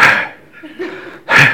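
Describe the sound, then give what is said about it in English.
A person imitates snoring with two harsh, breathy snorts, one at the start and a louder one at the end, separated by a quieter, low murmuring pause. “When I'm tired, I fall asleep and I snore. That's what you hear.”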